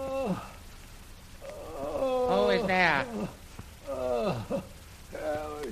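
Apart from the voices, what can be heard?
man groaning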